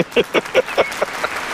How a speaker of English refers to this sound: All of that is fabricated. The crowd's going wild.